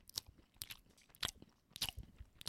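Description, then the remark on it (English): Someone chews crunchy food right up at the microphone, producing about five sharp, bright crunches spaced roughly half a second apart, with quieter wet chewing between them and no talking. “And let that sizzle right in the microphone. Oh yeah, and also masticate.”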